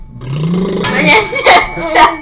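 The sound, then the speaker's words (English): A hand bell rings out in about three quick shakes, its bright metallic tone lingering between strikes, fairly loud, with a voice murmuring briefly before it starts. “I'll ring the bell, okay?”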